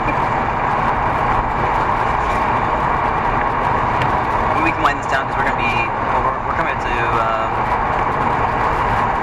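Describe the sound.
Steady, loud road rumble fills the inside of a moving car at highway speed on a highway, taking the Canada Way exit, a constant low roar running throughout while people talk over it.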